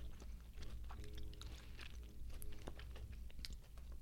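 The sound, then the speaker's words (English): Wet chewing of a sticky, gummy apple-flavored candy with Tajin, with irregular smacks and soft clicks over a low steady background hum, no talking. “It's so gummy. I'm going to be chewing this thing for an hour.”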